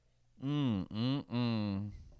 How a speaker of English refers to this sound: There he is. He's letting out a big yawn. Ah! He's like a kitty cat. Big yawn.